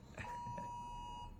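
A sustained electronic alert tone with steady high-pitched harmonics sounds from a phone during a nationwide 2 p.m. alert, holding continuously for over a second without pauses.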